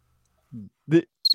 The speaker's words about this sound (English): Cricket.